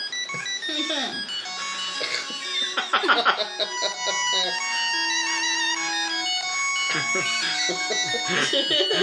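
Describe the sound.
The moon theme from the NES game DuckTales plays steadily, a bright, bouncy 8-bit melody with beeping square-wave notes stepping up and down over a simple bass line, with a few brief bursts of people talking over it.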